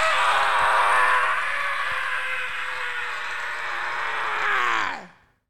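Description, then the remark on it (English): A single loud, sustained wordless scream from a man's voice imitating a man in a balcony yelling, held steadily for about five seconds before dropping in pitch and cutting off into silence. “So then, and then a few minutes later, a guy in the balcony screams, but not words and not for any reason. He went, ah!”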